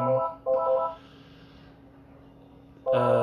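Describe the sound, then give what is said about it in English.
A telephone rings in loud, buzzy bursts, two short rings followed by a pause and then a third ring starting, with no one speaking. “I've got about 2 minutes left, and someone's ringing that now.”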